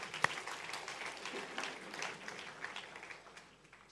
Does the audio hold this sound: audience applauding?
yes